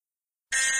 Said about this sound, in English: Sometime later that same day, at the Capitol building, Governor Milton Roop is hard at work in his office when his assistant buzzes him.